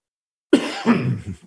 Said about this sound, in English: Excuse me, I have that cough